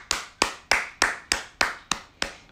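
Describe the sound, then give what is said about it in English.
A slow, steady round of applause from a single pair of hands: eight sharp, evenly spaced claps, each about a third of a second apart, with no talking over them. “Round of applause.”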